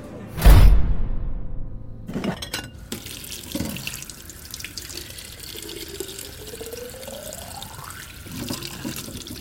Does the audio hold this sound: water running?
yes